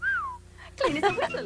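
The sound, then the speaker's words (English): A short, clear whistled phrase from an Irish Spring deodorant soap commercial, a single note that rises slightly then slides downward, heard before a voice begins speaking. “So you're fresh and... clean as a whistle.”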